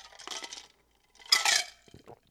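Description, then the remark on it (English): Ice cubes slosh and clink inside a cup of iced coffee as it is sipped, in two short bursts, a softer rattle followed by a louder, brighter jangle with a few faint trailing clicks. “You're probably going to hear my eyes slosh because I'm going to take a sip of iced coffee”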